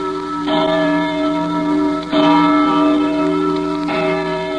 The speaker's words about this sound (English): We made this record of a church bell ringing in Boston just a few days back. Yet the bell itself was manufactured in 1816, 135 years ago. By the man who once rode through every Middlesex village and farm.